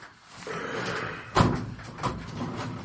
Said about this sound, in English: Open that drawer up.